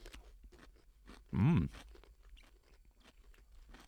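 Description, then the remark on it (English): Repeated crunching of someone chewing a crisp, crunchy Gus's half-sour pickle that contains mustard, with a loud appreciative hum partway through. “Ooh. Crunchy.”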